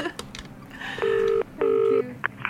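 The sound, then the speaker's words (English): Two steady electronic telephone tones as a phone call is placed to students, each lasting under half a second, separated by a brief pause, sounding clear with faint clicks beforehand; no one speaks. “Well, I will start ringing up students.”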